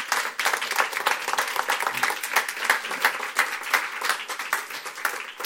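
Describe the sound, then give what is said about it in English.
Sustained applause from an audience, a dense wash of many hands clapping at steady volume with no pauses, filling the whole moment without any talking over it. “Let's give him a clap.”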